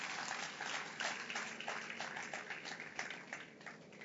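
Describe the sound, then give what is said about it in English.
An audience claps steadily for the actors for about four seconds, a dense, even patter of many hands with no voices over it. “Please clap for my actors.”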